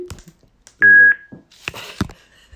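A single loud, steady electronic beep, a phone's call-ended tone as the caller hangs up, lasting about a third of a second, surrounded by sharp clicks, thumps and brief rustling handling noise.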